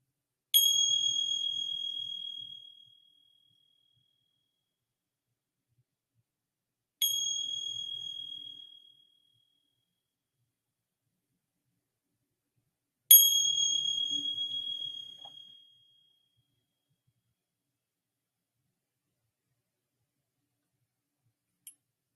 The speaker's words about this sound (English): And then receiving the sounds of the bell.